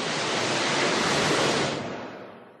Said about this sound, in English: The whoosh grew louder. Now it was a roar. Hang on, Obi-Wan shouted, as a wall of water suddenly blocked out the sky and headed straight toward them.